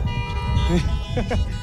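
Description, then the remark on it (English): Steady, buzzy car horn tones blare continuously for the whole moment, layered and overlapping, with a low rumble and indistinct voices murmuring underneath. “Bunch of honk happy people.”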